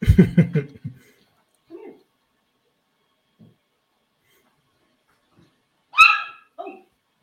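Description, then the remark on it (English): A dog lets out a loud burst of barking, then goes quiet except for a couple of soft whines, before a sharp high yelp and a short whimper near the end. “Did you hear him scream?”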